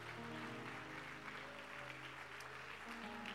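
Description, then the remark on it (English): An audience at an Apostolic Church service claps hands for themselves in a steady, dense burst of applause lasting the whole moment, with low sustained tones humming softly underneath. “And why don't you give yourself a hand clap for just being awesome?”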